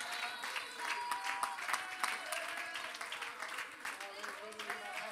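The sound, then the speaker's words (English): A church audience claps and cheers steadily in praise, dense overlapping handclaps mixed with shouting voices, sustained at an even level throughout. “Would you clap your hands? Would you lift up your voice above that hand clap?”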